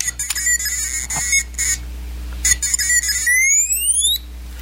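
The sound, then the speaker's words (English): R2-D2, the Star Wars robot droid, chirps and whistles in rapid electronic beeps, with warbling high tones and bursts, then ending on a long rising whistle that sweeps upward, fairly loud and with no talking. “R2-D2, it's been a while since we've heard from R2.”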